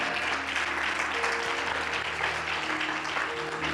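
A crowd claps steadily to give glory to God, a dense, continuous wash of many hands at even loudness, with a faint low hum and sustained tones underneath.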